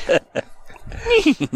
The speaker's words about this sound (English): Who's breathing on that mic?